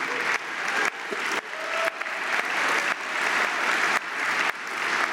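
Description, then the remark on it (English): Sustained applause from a sizable audience, a dense continuous patter of many hands clapping at steady loudness for several seconds, with no speech over it. “And those of you who didn't applaud, you know, God bless you.”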